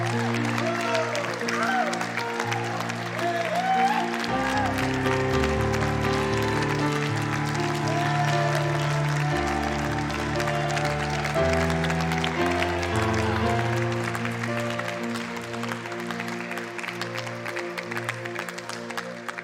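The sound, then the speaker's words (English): A large audience applauds steadily for the whole stretch, giving God a hand clap of praise, dense clapping mixed with scattered voices and cheers, while sustained keyboard or organ chords play underneath. “Come on, if you believe that God is good, give him a hand clap of praise.”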